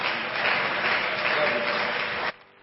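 An audience claps steadily together in praise to the Lord as a speaker comes up, a dense, loud wash of many hands that holds evenly for about two seconds and then cuts off abruptly, leaving quiet.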